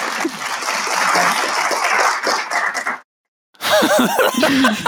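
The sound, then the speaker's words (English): A canned burst of crowd applause, dense and steady for about three seconds, cuts off abruptly. After a brief silence, people laugh and talk loudly. “Just a random applause. I love that. That's such a good idea, having sound effects on a podcast.”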